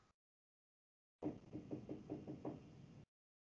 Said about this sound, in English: Somebody knocking at your door.